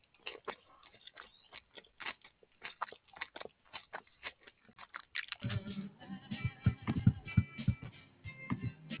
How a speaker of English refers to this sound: I don't know why I'm typing.